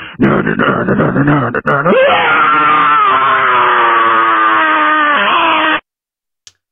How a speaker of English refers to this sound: you can leave us a scream mail, whether you want to scream